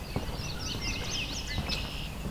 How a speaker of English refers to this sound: I'm coming along here and I've got some marsh wrens vocalizing. Question is, can I get them close enough to hear them well?